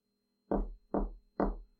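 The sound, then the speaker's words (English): Three heavy, evenly spaced knocks on a door, each a solid booming thud with a short ring, against a quiet background. “Nine Knocks”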